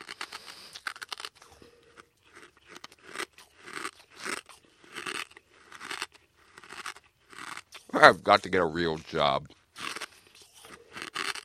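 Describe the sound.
Someone chews a glass light bulb, producing a steady run of sharp, gritty crunches and crackles, with a man's voice speaking briefly near the end.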